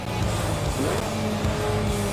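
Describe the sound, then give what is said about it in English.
A sports car engine in a driving video game drones steadily, its pitch rising and shifting as it accelerates, with a brief tire squeal and no voices. “I'm just gonna like drive like most sports car drivers do.”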